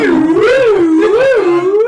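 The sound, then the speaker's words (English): A voice imitates a slide whistle: one loud, unbroken tone swooping up and down in smooth, wavering glides for about two seconds, with a buzzy, reedy edge. “It's like a slide whistle as it goes.”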